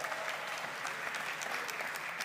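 Steady applause from an audience, a dense wash of many hands clapping at an even level for a couple of seconds, with no voices standing out.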